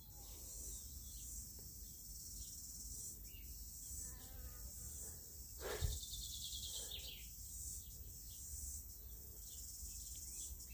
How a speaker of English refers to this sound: Here's a bonus track. Some summer sounds, I think. Cicadas, probably the odd fly, and bird calls.